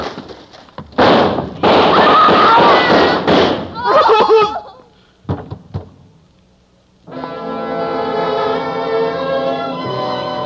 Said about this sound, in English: fired a shot into the ceiling, and the guns of the police chopped her down.